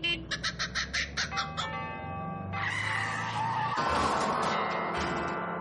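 A kookaburra's rapid, pulsing cackle of about eight bursts gives way to a noisy crash and clatter of a Hillman Minx car colliding with a set of tubular bells, mixed with ringing, bell-like metallic tones that sustain to the end. No one speaks.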